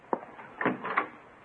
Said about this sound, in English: All right, I'll get the door.